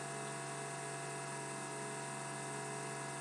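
A steady mechanical hum from an extra wine fridge, with many tonal layers and a whining high-pitched edge, holding constant and unbroken throughout, with no voices.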